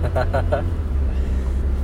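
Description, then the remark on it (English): Steady low rumble of a car's interior while driving, just after leaving a Starbucks, a constant engine and road drone filling the whole moment, with a brief bit of voice near the start. “And we're driving in my car.”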